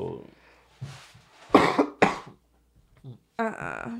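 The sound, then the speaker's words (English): Two sharp, loud coughs, a brief pause between them, with some faint vocal sounds before and a short voiced sound afterward. “Both of them are coughing. But that cough didn't sound bad.”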